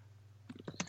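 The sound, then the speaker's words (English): Quiet computer keyboard typing: a quick burst of several soft key clicks begins halfway through, over a faint low electrical hum, with no one speaking. “Now, I can hear your keyboard.”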